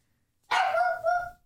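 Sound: small dog barking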